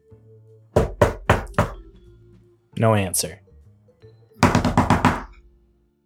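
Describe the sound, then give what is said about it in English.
Three sharp, loud knocks on a locked front door at the top of stairs beside a soda shop, a short pause while someone speaks briefly, then a quicker burst of about six firm knocks. “And no answer if we knock. You knock.”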